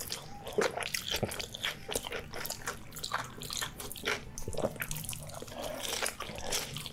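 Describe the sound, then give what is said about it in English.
Wet chewing and biting sounds from a video of a man eating a burger and french fries, with repeated crunchy bites and smacking mouth noises in an irregular rhythm, heard on their own without talking. “That is not me chewing tacos. That is a video we're watching.”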